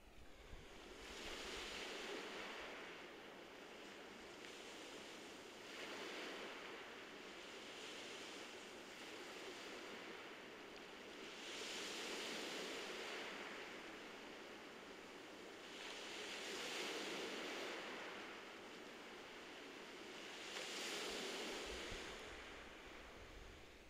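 Ocean waves wash onto the shore in a steady, rolling rhythm, each broad surge of surf swelling and receding every few seconds, with no voices present.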